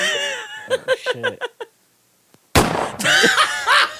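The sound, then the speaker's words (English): A single sharp, loud crack of a toy cap gun rings out after a brief pause, with excited laughter and giggling before it and voices erupting right after. “It's a cap gun.”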